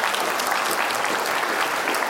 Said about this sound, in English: Well, let's give these students a round of applause. They did a great job.